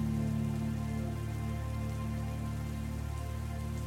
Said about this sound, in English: As you look upwards towards the city, the light rain begins to fade away. The final raindrops of a soft cloud tap at the stonework of a long-forgotten city